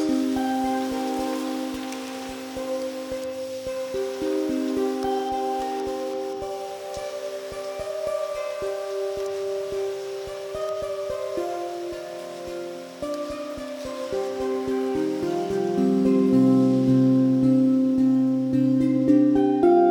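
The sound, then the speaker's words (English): Steady rain during a rainstorm, recorded while tapping a bed frame and run through noise removal software with settings flipped, leaving only the rain and jangly bits without the taps: a watery patter overlaid by warbling, metallic tonal ringing that shifts pitch throughout. It continues without pause, and no one speaks. “And I tried to use noise removal software to get rid of the rain, but I accidentally had the settings flipped, and so I only got the rain sound and the jangly bits and none of the taps themselves.”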